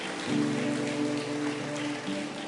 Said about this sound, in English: In fact, let's give Jesus a great big clap offering of praise and thank him today. Hallelujah.